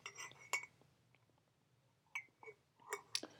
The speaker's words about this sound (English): I have misophonia, so I know that you guys are going to hate that swallowing sound. I'm so sorry.